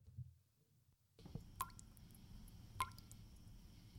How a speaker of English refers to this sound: Do the drips have you down? Then let the professionals at Swink Roofing Company take care of that leaky roof.